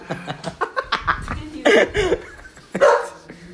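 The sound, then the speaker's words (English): A female dog barks at a hallway in a few sharp, loud bursts, with quieter short sounds and some laughter-like voices scattered between the barks. “All right, the dog starts barking when we talk about fucking spirits and shit.”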